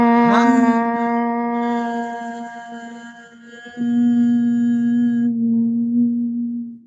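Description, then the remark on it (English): A long, steady chanted "hum", the bija mantra, voiced on an exhale and held on one pitch for several seconds, rich and resonant; partway through, a second, lower voice joins and the tone continues until it fades out. “And as you exhale, you're going to exhale the Bija mantra, hum.”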